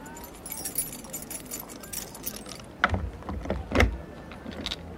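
Keys jingle and rattle, followed by a few sharp metallic clicks and clunks as a lock is worked and a door on a New York street is unlocked.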